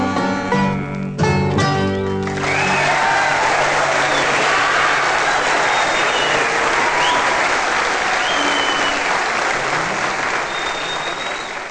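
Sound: audience clapping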